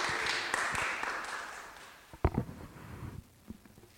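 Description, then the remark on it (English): An audience claps together for four readers after a Bible reading, in a dense burst that thins out and fades over a couple of seconds, followed by a few scattered knocks and shuffling sounds. “Round of applause for all four of our readers.”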